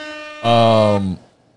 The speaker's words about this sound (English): I really meant to hit with the air horns.